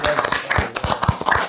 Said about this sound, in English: Yeah. Clap it up.